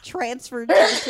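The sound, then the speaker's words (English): A person speaks briefly, then a sudden, forceful sneeze bursts out as a single harsh, breathy blast that trails off quickly. “Bless you.”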